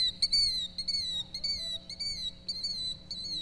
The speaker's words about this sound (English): It's called a killdeer. A killdeer is a tiny little bird that runs along the ground and it nests on the ground, and it will chase you if you come anywhere near its nest. You gotta be careful of those little killdeer.